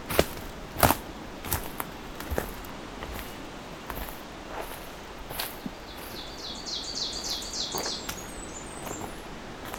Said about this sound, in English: Getting close to an ovenbird and a Blackburnian.